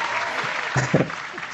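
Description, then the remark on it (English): A crowd applauds, a dense steady patter of many hands clapping at moderate loudness, with a couple of brief voices rising above it near the middle. “I think that deserves a big round of applause.”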